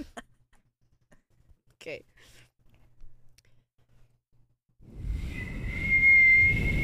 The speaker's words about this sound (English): I couldn't whistle for the longest time until I was, like, 21. And are you ready to hear my whistle?